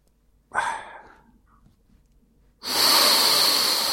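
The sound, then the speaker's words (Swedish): Two deep breaths with no talking: a fading breath early on, then after a short pause a long, loud, airy breath that carries steadily to the end. “Andas in, andas ut, okej.”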